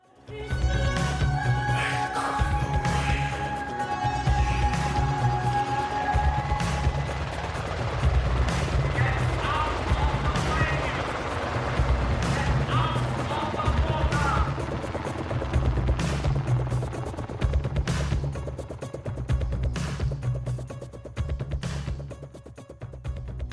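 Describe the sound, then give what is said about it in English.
A helicopter's rotor chops steadily and loudly through a musical track, its deep rhythmic thudding running nearly the whole time beneath layered synth tones and scattered sharp crashes. “But that helicopter sound in both songs is so effective.”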